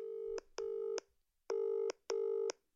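Telephone dialing tones: four steady electronic tones grouped in two pairs with a short pause between, clear and fairly loud, with no voices.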